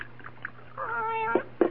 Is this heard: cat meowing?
yes